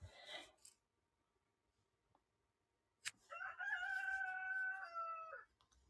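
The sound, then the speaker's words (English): A rooster crows once, a loud cock-a-doodle-doo lasting a couple of seconds, after a sharp click and a brief rustle in an otherwise quiet setting. “I was wondering if he was going to crow for you”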